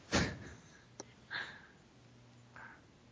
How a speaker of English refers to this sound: I think it's actually happening now. Just banged his head on the way and he's about to pass out.